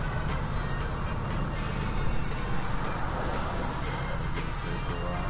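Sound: car interior driving noise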